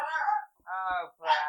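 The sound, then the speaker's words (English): A dog (female) barks at a passing car, giving three drawn-out, whiny barks in quick succession, each one a loud, moaning yelp separated by brief pauses. “So I was like, I should go shut the curtain so she stops barking.”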